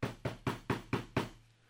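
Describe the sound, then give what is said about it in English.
Six quick, firm knocks rap on a wooden door in an even rhythm, fairly loud, then fade into a brief quiet tail with no voices. “And then, this time, there was a knock on his door.”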